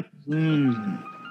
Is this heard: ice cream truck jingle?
yes